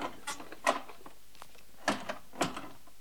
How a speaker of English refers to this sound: Knock!